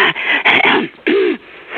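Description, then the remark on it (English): A voice imitates a child's hacking cough: a quick run of rough, throaty bursts, fairly loud, ending with a strained, voiced hack before trailing off. “You'll hear a child hacking”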